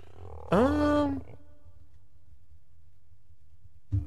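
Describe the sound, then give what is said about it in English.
A single loud, growling big-cat roar bursts out full for under a second, then cuts off into a quiet low hum, with a brief faint noise at the very end. “Roar.”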